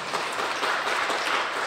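An audience breaks into a round of applause, a dense, steady wash of many hands clapping at once that holds a fairly even level throughout, with no voices heard over it.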